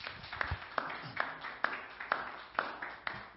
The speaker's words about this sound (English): Let's give God a hand clap of praise for his word. Amen.